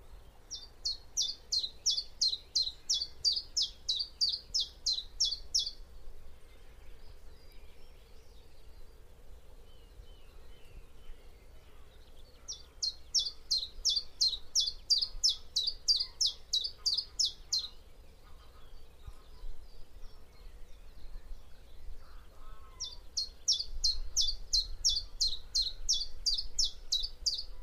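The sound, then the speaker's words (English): Chiffchaff song: three bouts of evenly repeated, high chirping notes, each lasting several seconds with pauses between, set against a faint low rumble of outdoor background. “Our European neighbours hear the same song rather differently, though.”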